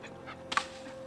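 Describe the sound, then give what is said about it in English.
A dog holding a stick pants in a few quick, breathy huffs, fairly quiet, with one louder burst midway, over a faint steady hum and no talking. “Hey, well, speaking of trails, dog's got the stick here, and which way do you want to go, buddy?”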